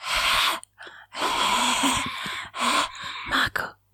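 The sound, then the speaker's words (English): Loud, heavy breaths right up against the microphone, a series of rough airy inhales and exhales in an uneven rhythm, with brief pauses between them and no talking. “Maybe I'll change to my ringtone or something and just have you like breathing.”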